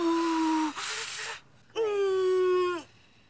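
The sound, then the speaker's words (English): A woman in labor, told not to push yet, moans loudly and strains, pausing for one sharp, breathy exhale, then lets out a second long, wavering moan that drops in pitch. Labored, with no words spoken. “Just slow breathing for me.”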